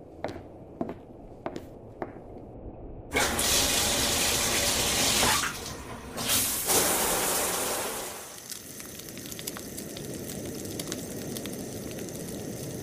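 shower water running

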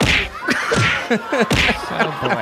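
punching sound effect

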